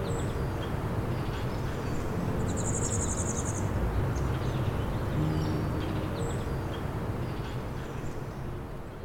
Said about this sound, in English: Most notably, though, I also managed to record the elusive golden-winged warbler, which has a very buzzy song.